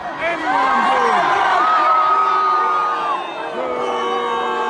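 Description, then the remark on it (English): A large crowd at a music festival concert cheers loudly, with many overlapping voices whooping and yelling in a sustained roar that barely dips across the whole stretch. “He was at a festival, a music festival with many concerts.”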